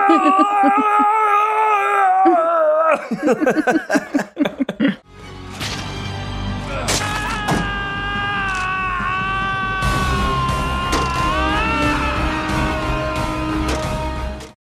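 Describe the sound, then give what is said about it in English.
A voice imitates an actor's long, drawn-out scream of pain from a scene where he is stabbed in the leg, a loud sustained yell that wavers and slowly falls before breaking off into choppy bursts, followed by dense, noisy background sound. “when he gets stabbed in the leg, Malkovich does such a long yell. It keeps going. It's like, ah!”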